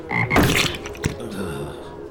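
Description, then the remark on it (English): A frog croaks in a short, raspy burst, followed by a sharp click and a fainter rattling trill fading out over a couple of seconds. No one speaks. “Is that a frog?”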